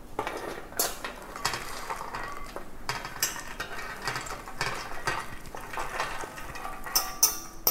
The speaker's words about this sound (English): And just give the nuts and chocolate a good stir so that all the nuts are coated with the chocolate. Just mix it well so you get every nook and cranny of the pecans coated.